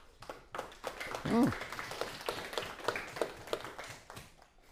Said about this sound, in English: Baptiste people love clapping.